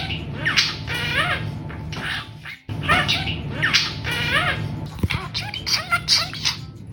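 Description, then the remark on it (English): A parakeet chatters and mumbles steadily, a stream of soft squawks, warbles and quick chirps with rising and falling pitch, briefly pausing before resuming with sharper clicks and squeaks. “It was little parakeet mumbles.”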